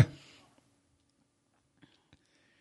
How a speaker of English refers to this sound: No, we're just drinking.